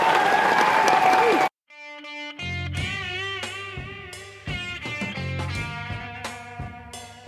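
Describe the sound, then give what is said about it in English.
A loud burst of hand clapping, like applause, lasts about a second and a half and cuts off abruptly. A brief silence follows, then a sustained, harmonically rich musical passage. “No, that's five hand claps.”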